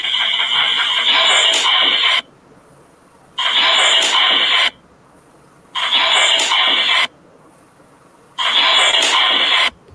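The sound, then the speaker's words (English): Loud bursts of crackling radio static from a played-back recording of an ITC spirit-communication session come in four roughly two-second blasts, each cut off by a brief silence, forming a steady on-off pattern. “And then the static.”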